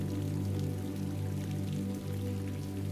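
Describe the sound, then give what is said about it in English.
Steady rain patters on skylights and streams down the windows in a continuous, even wash, with a low droning hum running underneath and no voices. “Rain falls on the skylights and streams down the windows.”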